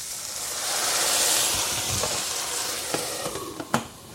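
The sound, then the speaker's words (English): Broth poured into a hot pot bursts into a loud, steady sizzle and hiss, with a few sharp crackles and pops toward the end; no one speaks. “Now we're going to put that broth in here, and we're going to cover the pot.”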